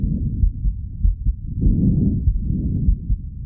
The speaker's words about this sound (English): This is what a healthy lung sounds like.